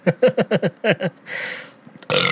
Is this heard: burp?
yes